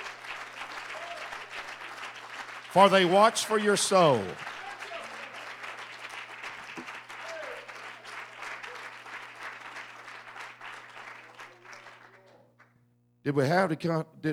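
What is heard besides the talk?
audience applause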